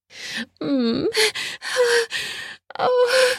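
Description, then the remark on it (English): A sharp gasp as a mouth lands on the speaker's nipple, followed by a series of breathy, partly voiced inhales and exhales, loud and up front with no other sounds around them. “I gasp when his mouth lands on my nipple.”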